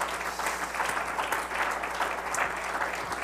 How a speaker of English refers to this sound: Well, clap your hands unto the Lord right now.